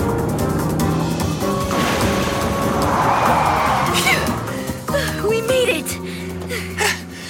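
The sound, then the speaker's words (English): A long, dense rumble of metal crashing and clattering as an avalanche of scrap cars tumbles down in a junkyard, loud and continuous, with scraping and banging impacts tumbling over each other before thinning out into scattered clanks near the end. “Carvalanche!”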